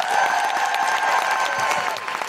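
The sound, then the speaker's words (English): Sustained applause from an audience in Brighton for Jessica Hynes, a dense, steady wash of many hands clapping at an even loudness throughout, with no voices standing out. “And please, can I have a huge, huge, huge round of applause for the incredible Jessica Hynes.”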